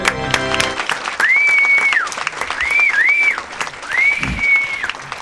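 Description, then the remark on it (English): Loud, steady applause from a crowd welcoming an arriving guest fills the whole stretch, with several long, sliding whistles rising above the clapping and brief cheers mixed in. “This is what happens when you bring your own crowd.”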